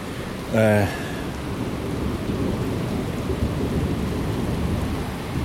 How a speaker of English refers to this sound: I'm recording again because I want to just hear the thunder. Pretty cool. And the rain. I don't know why I love the sound of rain so much.